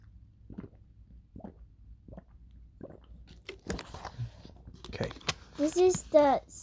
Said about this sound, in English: We can change it up. We can drink for like 6 seconds or 10. Which one? Let's just drink however much we want. Let me have some. Can I have some?